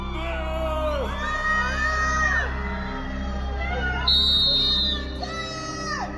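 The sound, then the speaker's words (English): Johnny Depp fans outside the Virginia courthouse jeer and whoop, heckling Amber and her witnesses, many voices overlapping in rising and falling yells, with a louder burst of shrill cheering near the end before settling back into a steady clamor. “Heckling Amber and her witnesses.”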